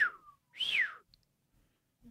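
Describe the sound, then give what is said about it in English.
A person whistles twice, a short falling note followed by a louder, longer rising-then-falling whistle, like an impressed or astonished reaction, with no talking. “It'd be cool if we could get a sound of someone doing one of those astonished whistles and then just insert it.”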